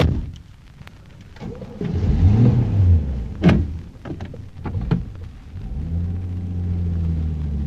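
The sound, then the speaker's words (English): A few clicks and clunks, then a car engine cranks and catches, settling into a steady, low idle that rumbles on to the end. No one speaks. “Still, somehow I've got to get to that car. At last, the car.”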